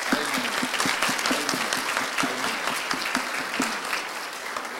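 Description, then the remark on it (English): A church audience claps steadily for several seconds for people who have just been saved, a dense, even patter of many hands with a few sharper individual claps standing out, sustained at a fairly loud level throughout. “Let's give them a clap.”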